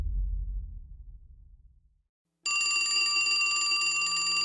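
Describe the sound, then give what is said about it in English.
A low rumble fades into a brief silence, then an old-style telephone bell in a grimy office starts ringing loudly and continuously, a bright metallic trill with no voices. “The phone in the grimy office rang.”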